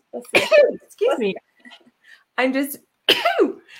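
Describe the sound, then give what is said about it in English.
Someone attempts a sneeze that never comes: a few strained, voiced breathy gasps and throaty catches in uneven bursts, separated by short silences, with no release at the end. “I was going to try to sneeze on the break, but it didn't work.”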